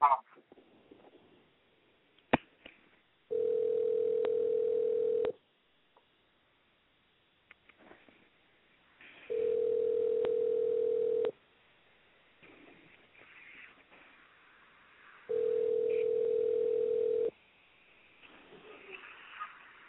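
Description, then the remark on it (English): Telephone tone from an unanswered call to a show guest: three long, steady electronic tones, each about two seconds, evenly spaced with pauses, clear over faint background noise. “Yeah, I guess we couldn't get him on the phone, Mommy.”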